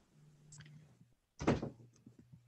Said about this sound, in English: close that door, please,